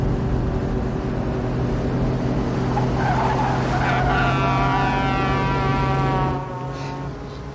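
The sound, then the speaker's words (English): A car tears away from a car park after a shooting, with a loud, revving engine and squealing tires. The screech climbs for a few seconds, then the noise drops off abruptly as the car pulls clear. No one speaks. “this is Thelma and Louise dashing away from the scene of the crime for the first time”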